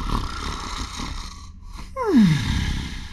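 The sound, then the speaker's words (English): A voice imitates a man snoring away in his chair: a single loud, drawn-out snore that slides downward in pitch, preceded by a soft, rough breathy rumble. No words are spoken. “is snoring away in his chair.”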